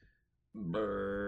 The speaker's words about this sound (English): Burp.